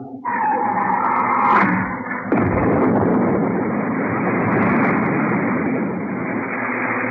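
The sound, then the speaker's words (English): Retro rockets, fired by pressing the retro rocket firing switch, ignite with a sudden loud roar that surges into a heavier, hissing blast after about two seconds, then thunders on steadily to the end with no voices. “The rockets do not act as a brake. They increase my speed rapidly.”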